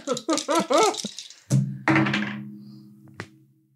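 A brief stretch of talking gives way to dice thunking down onto a hard surface, two solid knocks followed by a lingering rattle that fades, ending with one sharp click.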